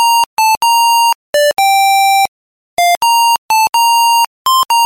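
A mobile phone ringtone melody, number 2 on a chart of the highest-selling ringtones of 2003, plays loud: bright, buzzy electronic notes in quick rhythmic phrases, a longer held tone, then a brief pause before the tune repeats. No voices.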